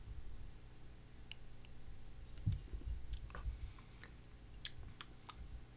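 sipping beer

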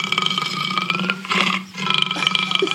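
big cat roaring

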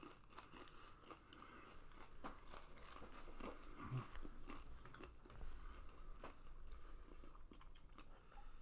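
person chewing food

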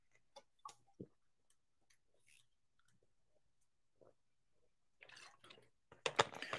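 sipping water

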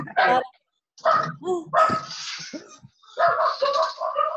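dog barking

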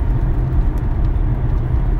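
car driving

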